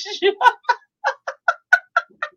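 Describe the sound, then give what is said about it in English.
A person imitating a yawning cat: a quick run of about ten short, mid-pitched, nasal vocal bursts in a fairly steady rhythm, moderately loud, with no other sounds. “Oh, and now you're a yawning kitty.”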